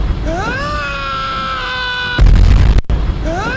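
A played scream sound effect: a loud, sustained scream slides up in pitch and holds, then is cut off by a sudden booming crash before a second scream starts rising at the end.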